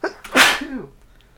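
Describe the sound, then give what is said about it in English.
A single loud sneeze with a sharp breathy burst followed by a brief voiced tail, then quiet. “Bless you.”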